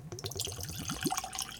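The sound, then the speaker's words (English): Bourbon from this year's Master's Keep release, a blend of mostly 9- to 10-year-old and some 14-year-old Kentucky bourbons, pours into a glass with a quick run of gurgling glugs whose pitch rises steadily as the glass fills, ending in a brief splash; no one speaks. “So I'm going to go ahead and get this poured while I tell you a little bit about this release.”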